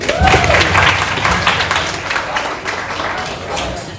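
An audience breaks into a round of applause, many hands clapping in a dense, crackling wash that holds steady for several seconds before easing slightly, with a brief whoop near the start.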